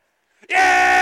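After a brief silence, a crowd bursts out in a loud, sustained cheering shout, a high whooping yell that holds steady to the end with no clear words.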